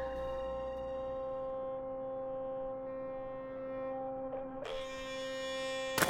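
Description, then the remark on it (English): A steady electric buzzing hum of a motorized toothbrush running continuously, with a sharper rattling surge near the end as it presses against something. “Why do you carry a motorized toothbrush around with you”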